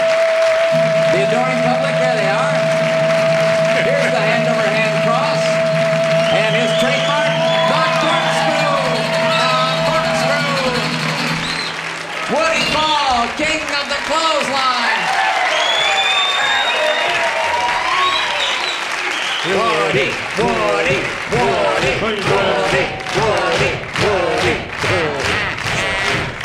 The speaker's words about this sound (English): Thank you so very, very much. God bless you for that warm and wonderful applause.